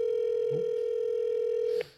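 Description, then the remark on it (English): A steady telephone dial tone hums continuously at a fairly loud level while a call is placed, then cuts off abruptly with a faint click just before the end. No one speaks. “Let's see if we can get this guy on the phone.”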